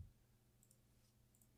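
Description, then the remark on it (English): Faint, sparse clicks of computer keyboard typing, someone typing in a search query, come in small clusters against a low background hum, with no one speaking. “I'm typing in Truman Show Paul Giamatti.”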